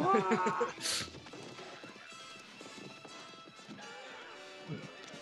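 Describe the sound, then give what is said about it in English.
Horses gallop in a cavalry battle with a steady clatter of hooves, amid a busy mix of indistinct shouting voices and a sharp crash early on. “Where there are horns, there's horses.”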